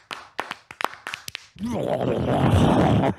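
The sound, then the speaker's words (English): A run of sharp, crunching smacks gives way to a loud, sustained animal growl, snarling and rumbling: a Foley effect of a wolf savagely eating someone. “Was that the sound of the wolf eating someone?”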